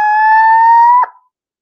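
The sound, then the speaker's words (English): A barred owl scream imitated by a hunter's call, used to make Merriam's turkeys gobble: one shrill, steady, buzzy tone that rises slightly in pitch, holds about a second, then cuts off sharply. No talking. “And this is the scream of a barred owl.”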